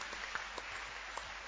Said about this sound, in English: Clap your hands for them.